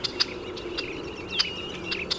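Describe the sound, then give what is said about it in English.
Short, sharp bird check calls, heard in between the bird's tier calls, repeat every half second or so, high-pitched and fairly faint, over a steady thin buzzing tone and soft background hiss. No one speaks. “We can also hear the little check, check, check in between the tier calls.”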